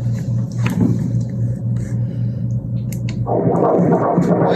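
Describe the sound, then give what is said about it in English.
A baby boy's fetal heartbeat on an ultrasound monitor: a fast, rhythmic whooshing throb over a low, steady electronic hum, growing louder and grainier toward the end. “That's a beating heart.”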